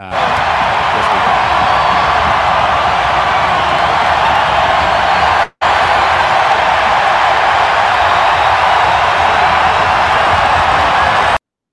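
A huge home stadium crowd at a 2018 game roars and cheers continuously, a dense wall of yelling voices that stays loud throughout, broken only by a brief cut near the middle.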